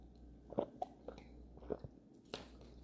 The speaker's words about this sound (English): I'm just sipping on Pepsi right now. You heard, we got some pizza yesterday. And I bought a 2 liter of some Pepsi.